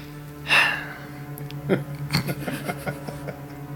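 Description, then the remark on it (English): A French bulldog named Kona gives a sharp snorting breath, then follows with a run of quieter snuffles and huffs over a steady low hum. “Disclaimer, if you hear a dog breathing or snorting, it's my parents' Frenchie, Kona.”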